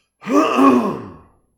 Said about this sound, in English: Hold on one second, folks. I gotta clear, let me clear my throat.